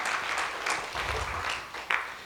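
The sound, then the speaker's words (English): An audience applauds with steady hand clapping, a dense crackle of many hands that holds at an even, moderate level for a couple of seconds. “That was better than you guys gave that a hand clap for, I think.”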